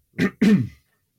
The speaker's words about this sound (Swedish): Ursäkta om jag ska hosta lite.